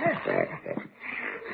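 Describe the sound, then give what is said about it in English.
A Great Dane snoring under a bed in a child's bedroom, a short run of rough, snuffling grunts and wheezy breaths with a brief pause before the snorting resumes. “he's got that dog under the bed.”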